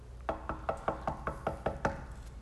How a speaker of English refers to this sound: And so this house church leader says, I get a knock on the door.